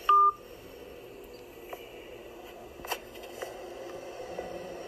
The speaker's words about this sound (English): He just hung up the phone.